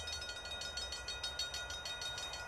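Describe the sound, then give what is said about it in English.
A hype train sound effect: a steady rolling rumble with a quick, regular clickety-clack rhythm, moderately loud and continuous throughout, with no talking. “I didn't even do the little hype train thing, did I?”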